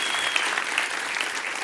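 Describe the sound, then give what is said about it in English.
An audience applauds the Lord together, a dense, steady wash of many hands clapping with no pauses, filling the short moment evenly from start to finish. “Give the Lord a round of applause.”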